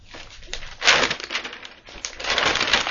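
A page-turning sound effect: two papery page turns, each a crisp, hissing rustle that swells and fades, with a brief scratchy flutter between them. No one speaks.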